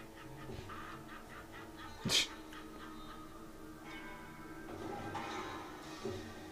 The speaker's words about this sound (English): Fucking duck.